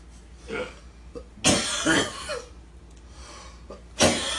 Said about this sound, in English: We haven't lost … over there. He normally coughs a lung out.